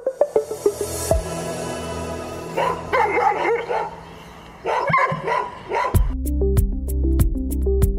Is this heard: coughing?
no